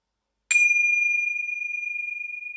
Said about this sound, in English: I'll sound a bell to signify the start and the end of the prayer journey.